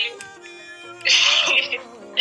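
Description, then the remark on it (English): A single sharp sneeze bursts out, loud and breathy, standing out briefly between quieter stretches of background voice. “Yeah, God bless you.”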